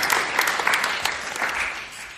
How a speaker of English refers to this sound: Can we clap again for everybody for sharing? It takes guts to get here to share. Thank you, everybody.